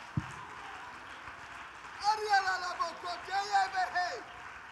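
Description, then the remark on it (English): After a quiet start, an audience erupts into loud clapping and excited shouting unto God, with several raised voices crying out over a steady wash of applause that swells and continues to the end. “Somebody clap your hands and shout unto God with a voice of expectation.”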